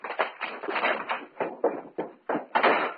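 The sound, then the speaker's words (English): A spider knocks a bottle of chemical serum off a table onto the floor. The bottle clatters and bounces in a quick series of sharp knocks before rolling to a stop, fairly loud with no voices. “Spider just got through knocking the bottle of chemical serum to the floor.”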